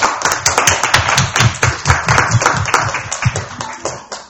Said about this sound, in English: You see, let's give a round of applause to our prophetess over here.